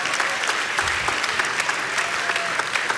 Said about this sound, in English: Come on, give yourself a round of applause.